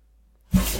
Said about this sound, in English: Yes, you were. That was the cutest sneeze